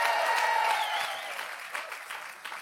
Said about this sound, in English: If you believe it, come on, give him a good hand clap and a shout.